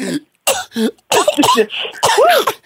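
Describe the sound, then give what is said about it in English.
A rapid run of harsh, throaty coughs, about five or six bursts in under three seconds, loud, some strained and voiced with a hoarse, theatrical edge. “You know, as you were leading, that's like the minister about to call everybody to the altar and just start coughing.”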